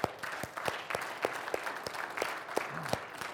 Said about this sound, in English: Okay, that's called clapping. And it's perfectly okay to do that in church.